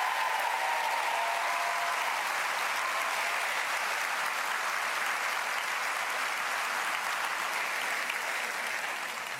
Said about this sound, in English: Let's have a round of applause again for Grace Tame and Rosie Batty.